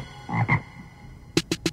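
Frog croaks: two deep, throaty croaks followed by three quick, raspy ribbits in a steady rhythm, fairly loud with no voices present.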